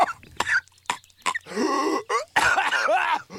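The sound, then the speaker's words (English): The cartoon character Patrick coughs and chokes, unable to breathe air inside Sandy's tree dome: a few sharp coughs followed by longer strained, gagging, gasping sounds, loud with no talking. “Patrick coughing, you know, he's drowning because he can't breathe.”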